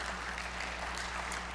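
A crowd claps steadily, a dense, even wash of many hands applauding at moderate volume with no break, over a low constant hum.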